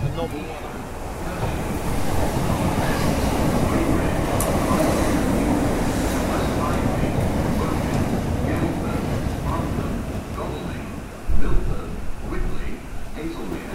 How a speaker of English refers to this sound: Curious as I'm standing here at the station, looking through. Okay, this train is late now, 12 minutes late, 13 minutes late.